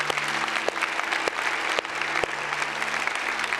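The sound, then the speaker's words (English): An audience gives a clap offering for Jesus, clapping steadily, a dense wash of many hands with a few sharper individual claps standing out, sustained at an even loudness for several seconds without any talking. “Let's give him just a clap offering.”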